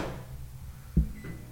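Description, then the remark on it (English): A microwave oven door, with bacon cooking inside for 5 minutes, clicks shut with one short, solid clack, followed by a fainter tick, against a low steady background hum with no one talking. “You're also going to hear the click of the door.”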